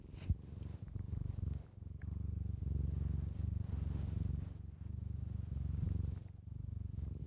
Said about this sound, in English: I feel like y'all need some more peanut butter purrs.